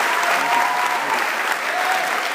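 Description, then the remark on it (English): A large audience of student-athletes at Mount Aloysius College applauds steadily, a dense wash of clapping hands that stays loud and even throughout, with no voices standing out. “Give yourselves one more round of applause.”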